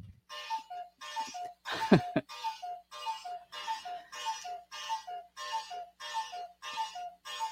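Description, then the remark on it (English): A clock strikes 12 o'clock noon in a steady series of about a dozen evenly spaced, resonant chimes, moderately loud, with a brief cough-like noise near the start. “I'm getting ready to have the big chimes here for my clock for 12 o'clock noon.”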